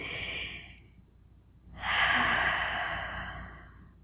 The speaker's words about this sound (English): So taking a big deep breath and allowing yourself to become quiet.